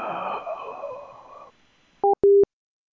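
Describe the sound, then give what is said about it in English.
A noisy phone-line hiss fades out, then a telephone at a Best Western Sure Stay hotel rings as two short, loud electronic bursts in quick succession, heard clearly through the call with no talking. “I heard a phone ring.”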